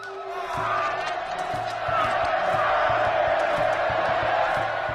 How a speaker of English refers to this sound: So they'd cut the beating hearts out of their victims' chests with a razor-sharp obsidian blade, as a crowd of onlookers cheers wildly.